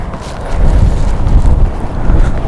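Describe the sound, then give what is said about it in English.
Strong wind buffets the microphone in a steady, heavy low-frequency roar with gusty swells, loud, with no voices present; outdoors by the sea with massive waves and a very slight drizzle in the air. “The waves are still pretty massive, and as you can hear, the wind is, while not as bad as yesterday, meh.”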